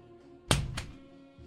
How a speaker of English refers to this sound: The dude heads for the door, and the door opens.